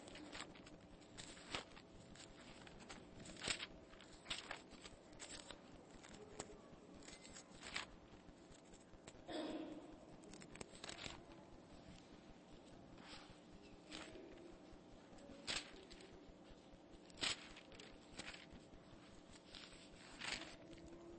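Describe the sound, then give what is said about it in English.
Many Bible pages being flipped at once while turning to Matthew 9, a steady soft rustle broken by irregular crisp page turns, like a crowd turning through books together, with no voices. “Love to hear the sound of Bible pages turning.”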